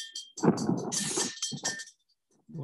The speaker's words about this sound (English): So I just feel to do a prophetic act, and I'm going to ring this bell, and I'm rousing Australia. I'm rousing the ecclesia to be wide awake and alert to the deception and the trickery of the enemy in these times. Very good bell.